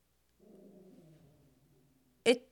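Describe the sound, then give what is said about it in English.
A dog named Soupy growls low and steadily for about a second and a half, the rumble slowly fading, then gives one sharp, short bark, with no talking. “Sorry, Soupy is growling.”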